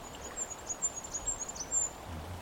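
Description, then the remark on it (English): A goldcrest, feeding in the needles of a conifer about 5 metres up, gives a quick string of very high, thin calls, soft and tightly spaced for about two seconds, over a faint low outdoor rumble. “The bird's really close, yeah. Just maybe 5 metres above us.”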